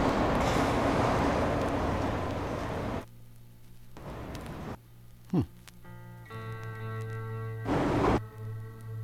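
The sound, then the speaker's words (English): A rumbling, roaring train-like noise fills the opening, then gives way to sustained tonal hums with recurring bursts of rushing noise and a brief falling swoosh, layered within a music track. “You hear that train noise still? Big on the train noise on that track.”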